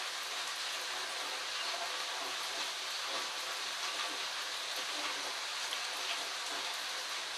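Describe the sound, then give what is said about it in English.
Steady rain falls continuously, a dense even hiss of drops pattering on surfaces, constant in loudness throughout with no voices. “So, but rain like this, completely different.”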